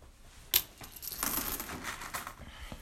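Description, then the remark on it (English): Dirty, worn metal coins clink and rattle as they are sorted by hand, starting with one sharp clatter and followed by a steady run of lighter jingling, with no talking. “Most of these coins are absolute garbage, and they're completely dirty, and they've lost most of their detail.”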